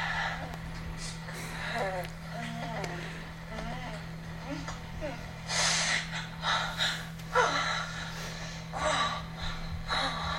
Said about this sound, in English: I found one here says loud orgasm. Oh, jeez. This is what you play right as you walk through a door.